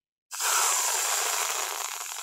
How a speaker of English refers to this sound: What's that sound? Air leaving a balloon? Paper being torn? Good guesses, but this is much sweeter. Whipped cream! Piled on top of hot chocolate! That's the best sound we found all day!